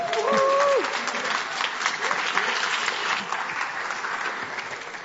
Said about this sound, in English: So our guests want to come up. Is that okay? Should we give them an applause?